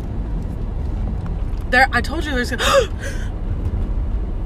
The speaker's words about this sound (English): The car scared me.